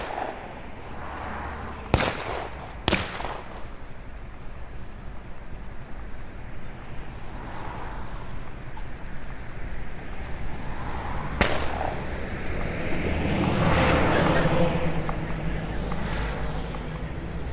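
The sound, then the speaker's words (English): Explosions and gunfire at a crossroads in German-occupied France, drawing stormtroopers away: two sharp, loud bangs close together near the start and another later, over a constant low rumble of battle noise that swells toward the end. No one speaks. “Preparing themselves for yet another skirmish, the three are surprised when explosions and gunfire pull the stormtroopers away from the crossroads.”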